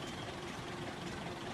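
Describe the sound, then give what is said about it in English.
A car engine idles steadily, a continuous low rumble with a faint mechanical hum, even in level, with no speech over it. “He's got his engine running.”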